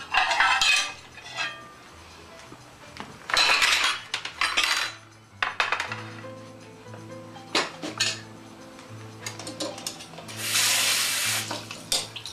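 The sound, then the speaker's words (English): Dishes and cutlery clink and clatter against each other in short, irregular bursts while tap water runs and splashes in a sink as a knife is rinsed and a plate is fetched while preparing chicken, with a low steady hum underneath and no talking. “Get my plate.”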